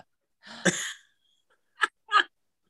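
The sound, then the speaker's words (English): A sharp cough bursts out with a rough, breathy tail, then after a short pause two quicker, smaller coughs follow. No one speaks. “I'm sorry. I had to cough really bad.”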